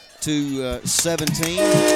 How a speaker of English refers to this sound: Your final score here from Montevallo is you hear the train a-roaring.